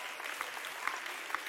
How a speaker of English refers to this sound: Oh, somebody clap your hands and lift your voice to him right now.